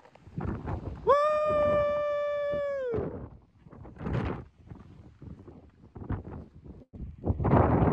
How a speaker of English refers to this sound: Every time I pull my phone out, the wind kicks up. It's crazy up here.